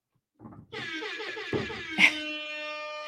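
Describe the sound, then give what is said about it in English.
A loud, blaring air horn sounds and holds for over two seconds, its brassy tone wavering slightly, with a couple of sharp bursts in the middle. “Now we've got none other than, drum roll, where's my air horn?”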